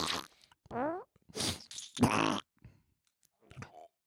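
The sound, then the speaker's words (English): Several wet squelching bursts as a hand reaches into a pound of soft cream cheese, one with a wobbly, rising-and-falling fart-like buzz, separated by short silences, with a final faint squish. “The cheese is farting.”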